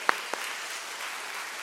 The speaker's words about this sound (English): See, there you go. Clap for them today.